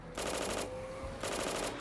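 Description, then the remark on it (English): Rapid bursts of automatic gunfire crackle in quick succession, with a brief pause between two loud volleys, over a steady engine-like hum and no voices: Capone's American Boys firing out the window of their vehicle while chasing Frankie Yale's car. “The American Boys chased him in their own vehicle, firing out the window in an attempt to gun him down.”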